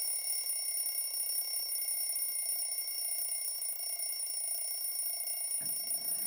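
An alarm clock rings continuously and loudly for several seconds with a steady, shrill, buzzing tone. No one speaks, and a short low thump comes just before it ends.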